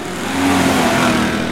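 Multi-ton monster truck engines rev loudly, a deep rumbling roar whose pitch climbs slightly and holds steady over a wash of broad engine noise, with no voices.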